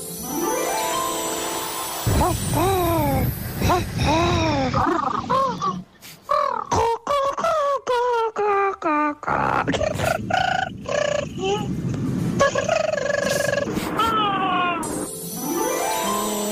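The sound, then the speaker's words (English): A rapid string of human voices imitating pigeon cooing, gathered to build a chorus for a pantomime: each a warbling, swooping call, some stretched and wobbly, others short and squawky, loud with no pauses between attempts. “We're looking for the pigeon noises for the One Take Panto.”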